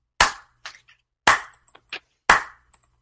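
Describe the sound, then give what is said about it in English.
A polite golf clap congratulating the winner of a prize of three pictures: three sharp, bright claps spaced about a second apart, with a few softer, quieter pats in between, and no voices. “Golf clap.”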